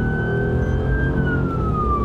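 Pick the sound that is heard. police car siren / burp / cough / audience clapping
police car siren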